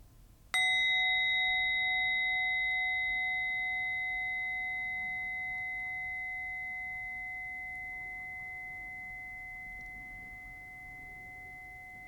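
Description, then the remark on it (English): A single meditation bell is struck once at the end of a loving-kindness meditation, ringing out with a clear, sustained tone that slowly fades over about ten seconds, heard alone with no talking. “As we end this meditation, I invite you to take 3 deep, full breaths as I invite the bell.”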